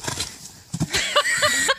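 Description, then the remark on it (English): A horse's hooves thud down in a quick cluster of heavy impacts as it lands from a standing vertical jump made without running, taking off from its back legs, with some faint background noise around them. “I mean, I'm surprised a horse can jump that high without running.”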